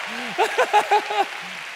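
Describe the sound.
An audience claps steadily in a dense, even wash of applause for a pastor, while a voice calls out a few drawn-out, sung-sounding syllables over it.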